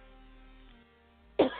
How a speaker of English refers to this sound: If you hear me coughing, it's because I got a piece of quinoa stuck in my throat.